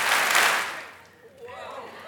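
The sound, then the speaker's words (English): A large crowd of about 10,000 people, called on to give three claps all at the same time, claps together in one loud, blurred burst that fades within about a second, then a voice starts speaking. “So when I tell you, "Give me three claps," I want us to do three claps all at the same time.”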